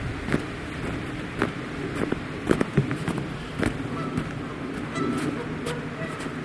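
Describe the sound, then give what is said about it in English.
A flock of geese honks repeatedly in irregular, overlapping bursts in a snow-covered landscape on a warm day, harsh nasal calls rising over a steady low rumble throughout. “Geese are making a lot of noise.”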